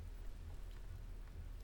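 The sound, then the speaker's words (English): Steady rain falls on a window in a continuous soft hiss, with faint scattered drops tapping against it, during the first big thunderstorm of the fall after the thunder had died down. No voices, just the even, moderately quiet patter throughout. “It was raining, the first big thunderstorm of the fall, but the thunder had died down and it was calmer outside.”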